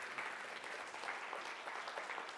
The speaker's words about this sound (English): Didn't mean to cut off your applause